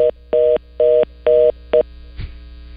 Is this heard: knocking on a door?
no